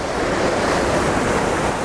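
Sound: waterfall rushing water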